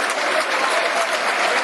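stadium crowd applause

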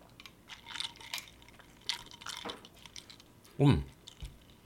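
sipping a cocktail

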